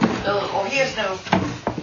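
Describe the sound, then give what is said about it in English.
A chair is shifted across the floor, giving a couple of short wooden clunks and bumps while people keep talking over it. “Here, let me move it over to where you're at.”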